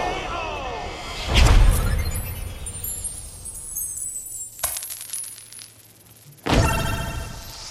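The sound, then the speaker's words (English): Video game coins spill out in three bright, jingling bursts, each opening with a sharp impact and shimmering metallic chimes that ring out before fading, as bad guys who are hit turn into coins in a video game movie. Loud. “When you hit bad guys, they turn into coins.”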